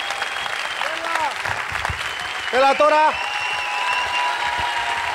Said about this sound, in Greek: Δώστε του το πιο θερμό χειροκρότημα, παρακαλώ πολύ.